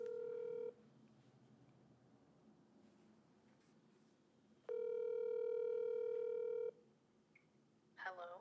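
An outgoing phone call placed from a living room rings on the line: two long, steady electronic ring tones separated by a quiet pause of a few seconds, followed by a brief rustle near the end.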